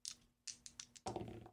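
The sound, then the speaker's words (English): Two dice are rolled in a game to decide who takes their challenge first: a few sharp, bright clacks at uneven intervals, then a dense burst of rattling and tumbling as they settle. No one speaks. “All right, well, let's begin by deciding who gets their challenge first with a roll of two dice.”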